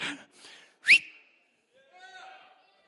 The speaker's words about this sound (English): The next evangelist comes, he whistles, y'all throw that leg up.